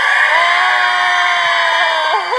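An audience cheers and screams loudly and continuously, a dense, high-pitched roar holding steady throughout, with one voice wavering upward as it tapers near the end.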